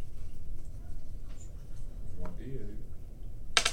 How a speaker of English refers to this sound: All right, so you hit with the warhammer. Go ahead and roll the damage dice.